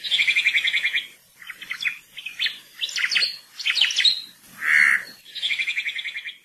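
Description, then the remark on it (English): An oma'o (Hawaiian thrush) on Hawaii Island calls loudly, mixing rapid trilled phrases with sharp, varied whistled notes and a buzzy burst, repeating in quick bursts with no talking. “The oma'o, or Hawaiian thrush, is found only in the native rainforests of the Big Island.”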